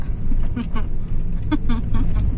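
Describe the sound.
Steady low rumble of a car interior as the car drives home, a constant engine and road drone filling the background while voices murmur briefly over it.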